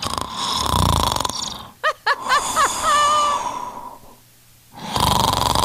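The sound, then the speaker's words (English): A woman snoring in her sleep at night, recorded on an iPhone: a long raspy breath, then a few quick fluttering pulses and a thin whistling tone, before another noisy breath begins. No one speaks. “Yeah, there's nothing about snoring that's uniquely male, masculine.”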